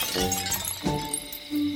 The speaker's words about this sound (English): So I'm just going to pick it up. The moment you pick it up, you hear broken glass rattling inside.